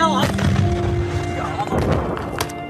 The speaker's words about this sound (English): Another drove towards a Kurdish convoy, the troops yelling as they spot the attacker. Then, the sound of the explosion.